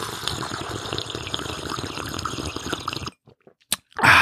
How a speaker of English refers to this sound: Oh, love them. You guys know I do. Slurping away as I do all the time.